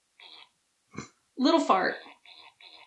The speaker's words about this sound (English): Little fart.